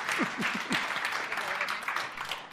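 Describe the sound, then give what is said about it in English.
An audience claps steadily for a woman who has put on a tool belt. It is a dense wash of many hands, with a few whoops or cheering voices mixed in near the start, sustained at an even level throughout. “I think she deserves a good round of applause.”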